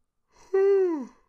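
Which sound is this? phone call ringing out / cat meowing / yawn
yawn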